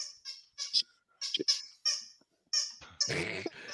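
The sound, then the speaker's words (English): A puppy named Boudreaux lets out a string of short, high-pitched squeaky whimpers, around seven in irregular bursts, ending with a louder, rougher scuffling burst of sound. “I hear somebody's puppy.”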